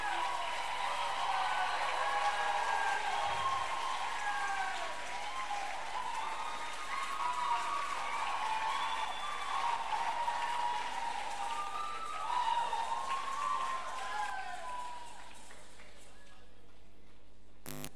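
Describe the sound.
An audience at an LCF Unilag gathering claps steadily for about fifteen seconds to welcome the last panelist, a dense, even wash of many hands with scattered cheers and voices mixed in, before it thins out and stops.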